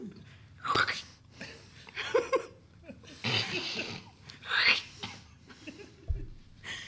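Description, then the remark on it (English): A series of sharp, crackly crunches, about six over several seconds at an uneven pace, fairly loud, as really crunchy bugs are squashed one after another. “I'm squashing really crunchy bugs.”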